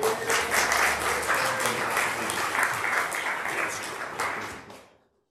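A crowd applauds steadily for about five seconds, a dense wash of many hands clapping at even loudness before it quickly fades out to silence.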